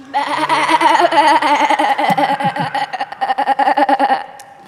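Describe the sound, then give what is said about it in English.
An audience imitates farm animal noises together, a loud overlapping jumble of wavering baa-like bleating cries that fades out after about four seconds. “This means that every time I say, but all Mary and Joseph heard was, you'll make your animal noise.”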